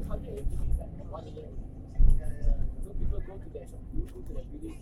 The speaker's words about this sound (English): Wow, we bypassed the public bus.